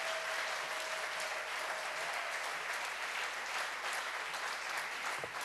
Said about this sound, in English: Applaudissons pour le Seigneur. Let's clap for the Lord.